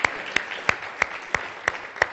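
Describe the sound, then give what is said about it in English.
A church audience claps together, giving the Lord a hand clap during a morning service, in a steady rhythm of sharp, loud unison claps about three per second over a dense wash of scattered applause. “Can you give the Lord a hand clap this morning, because he's a good God?”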